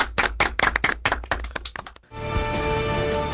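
A burst of audience applause, with dense, irregular sharp claps for about two seconds, abruptly giving way to a steady musical passage.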